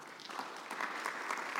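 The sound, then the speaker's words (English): A church audience claps hands for Jesus Christ, a dense, steady patter of many overlapping claps at a fairly even level throughout, with no voices heard over it. “Can you clap hands for Jesus Christ?”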